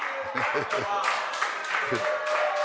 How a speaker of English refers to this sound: Look. You see, I see people clapping. Somebody has gone to get a man with a hat and dark glasses and he's clapping.